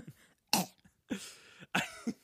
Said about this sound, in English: Sorry, I got a crackly voice. Well, every single time I clear my throat, I'm like. No, you just got to go full throttle directly into the mic.